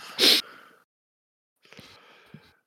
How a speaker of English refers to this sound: Well, I sit down breathing heavily after all this exertion, mostly rhetorical in nature.